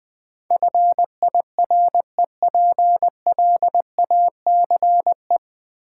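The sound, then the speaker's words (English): Morse code for the word fireplace: a single steady mid-pitched beep keyed into quick dots and longer dashes, grouped into letters with short pauses between, with no voices. “Fireplace.”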